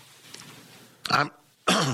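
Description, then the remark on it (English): Two sharp coughing bursts with a raspy throat-clearing quality, separated by a brief pause, following a quieter murmur of voice at the start. “I'm infected by all this. I gave you the man the coughs.”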